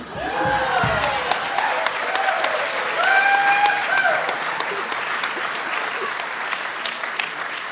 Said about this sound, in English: Like wrestlers costumed for combat, a lurid lucha libre mask versus a hooded drop crotch long sleeve singlet, the crowd goes wild.